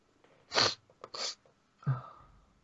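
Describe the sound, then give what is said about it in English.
A loud sneeze: a sharp, hissy burst, a second shorter explosive burst, then a low snorting exhale. No one speaks. “Give me a second, I'm about to sneeze.”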